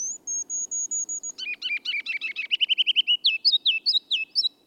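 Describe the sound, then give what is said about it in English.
A male ruby-crowned kinglet sings its spring song in the lowlands: thin high notes open, then a rapid run of bright chattering phrases, ending in a series of loud, rollicking three-note whistles. “The ruby-crowned kinglet tunes up his spring song only in the lowlands.”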